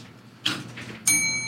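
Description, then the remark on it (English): After a brief clatter of handling, a new blue bell is struck once, giving a bright, high, metallic ring with layered overtones that hold steady and sustain to the end. “This is a new bell. It's blue.”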